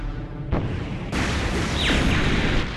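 Booming artillery-like blasts from a Gundam anime battle scene: a sharp hit, then a heavier burst that rolls into sustained loud rumbling, with a brief whistling sweep cutting through. No one speaks.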